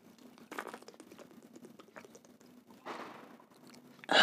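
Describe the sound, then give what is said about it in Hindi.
A man with a dry throat drinks a little water in quiet gulps and swallows, with small wet clicks and mouth noises between them, ending in a sudden louder burst. Nobody speaks. “और मेरा गला सूख रहा है तो मैं थोड़ा सा पानी पी लेता हूँ, एक सेकेंड।”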